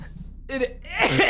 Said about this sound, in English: No, that cough isn't in the script. It's fine, man.